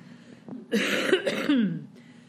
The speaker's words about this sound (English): Sorry, I'm still coughing, but I'm not contagious, okay? And I do not have COVID.